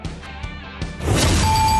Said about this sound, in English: We all know about the speed of sound, but have you ever thought about the sounds of speeding? Drive too fast, you can hear the sound of your vehicle crashing because one way or another, speeding catches up to you.